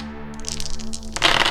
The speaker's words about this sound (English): Damage for this spell is 5d6. Let's roll a whole heap of dice. How exciting.